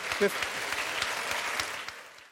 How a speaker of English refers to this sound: Before I let you go, round of applause.